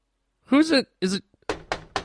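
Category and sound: household object, knocking on a door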